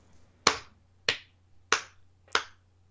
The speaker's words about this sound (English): That's not a sarcastic clap.